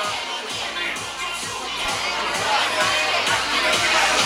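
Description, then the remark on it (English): Steady crowd chatter fills a full room of people at a food competition, a dense, continuous wash of overlapping voices with no single speaker standing out, growing slightly louder toward the end. “Oh, we still have a full crowd here, a full room full of people.”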